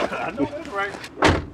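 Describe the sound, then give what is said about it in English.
A truck door shuts with a single loud thump near the end as a passenger gets out, right after a stretch of someone talking. Background rumble sits underneath throughout. Autumn afternoon in West Greenville, South Carolina. “just hopped out of the truck and he's going up to”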